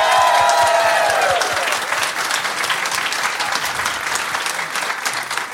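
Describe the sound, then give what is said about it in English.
An audience bursts into loud, steady applause welcoming a guest on a show, with a few cheers and whoops at the start, the clapping continuing evenly before easing slightly toward the end. “Can you please welcome Ryan Shelton, everyone?”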